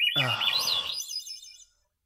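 A short burst of bird chirping: quick warbling tweets that rise and fall, with a lower throaty tone at the start, then the chirps thin out and stop after under two seconds.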